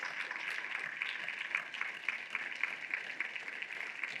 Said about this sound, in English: Here on Father's Day, so could we have all of the fathers, would you please stand so we can give you a big round of applause for being a father and celebrating Father's Day.